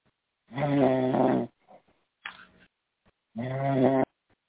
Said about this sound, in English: Okay, you're going to have to hang up this one because I'm going to hang this person up. She's snoring.